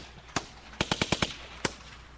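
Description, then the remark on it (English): Sharp gunshot bangs arranged in a rhythmic pattern as a music beat made out of gunshots: a single shot, a quick run of five evenly spaced shots, then one more, loud with no voices. “This is the hardest beat anybody's ever heard. It's made out of gunshots. Gunshots on a beat.”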